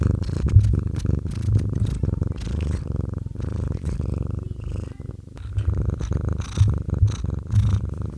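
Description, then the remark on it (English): A cat, Madam Puff, lying on a lap and purring steadily into a microphone, a low rumbling drone pulsing in rhythmic waves with each breath, loud with no voices over it. “I wonder if your day might be improved by the following recording of Madam Puff, who lay on my lap and purred into my microphone earlier.”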